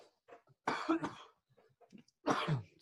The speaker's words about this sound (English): Sorry, I need a cough.